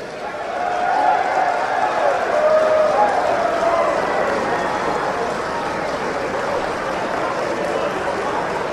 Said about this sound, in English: Now, what you're hearing, that those are Republicans, and the Republicans are cheering because the modification of Obamacare has passed. It's not the repeal, it's the modification.